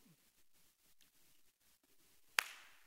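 One sharp, loud hand clap rings out near the end after a stretch of quiet room tone, with a short, bright decay and no talking around it.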